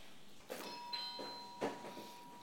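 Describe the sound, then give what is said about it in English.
A doorbell chimes, its struck tones sounding about three times and lingering with a bright, steady ring that slowly fades. Fairly quiet, with no talking. “I see we have someone at the door.”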